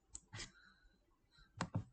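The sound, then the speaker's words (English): A handful of soft keystrokes on a computer keyboard, typing a Google search, tapped in two short bursts separated by a quiet pause, fairly faint with no talking. “You're gonna hear me typing here.”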